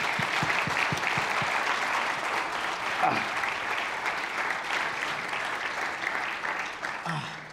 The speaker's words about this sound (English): Thank you, Sam. Why don't you guys give Sam a round of applause?